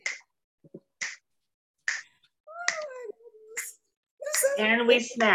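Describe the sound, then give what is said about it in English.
Sharp, crisp finger snaps ring out one at a time, roughly a second apart, as an audience snaps instead of clapping after a poem is recited, poetry-recital style, followed by high-pitched voices and excited, squealing chatter. “You can clap if you want to, but what do we do, girls? We snap.”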